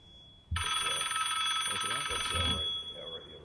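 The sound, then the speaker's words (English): A mobile phone suddenly starts ringing, loud, with a bright, buzzy ringtone that lasts about two seconds before stopping, while people keep talking underneath. “Is that your phone?”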